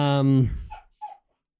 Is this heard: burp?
no